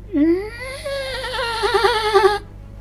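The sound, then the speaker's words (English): A voice imitates a rattling shriek from behind a door: one sustained, warbling cry about two seconds long, rising in pitch and trembling harshly before cutting off abruptly. “you hear a sound coming from the other side of the door. It sounds like a rattling shriek.”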